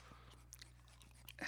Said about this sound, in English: You're really going to chew gum on the air?